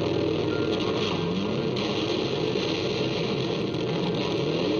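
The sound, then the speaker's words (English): A loud, steady motorcycle engine roar revving continuously for a few seconds on a rock song track, dense and growling, with no voices over it. “wanted the sound of a motorcycle on the track.”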